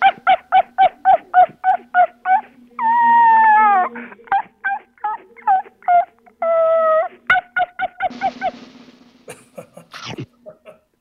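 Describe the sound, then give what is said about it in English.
A woman's voice imitates a barking dog: quick runs of loud yaps in a steady rhythm, broken twice by longer drawn-out whining howls, ending with a few ragged barks. “…, so you're going to bark like a dog”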